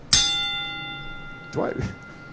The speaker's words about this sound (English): Well, no, it sounds like you're hesitating on the bell. Well, it is a hesitation. The bell stuttered. That's exactly what it was.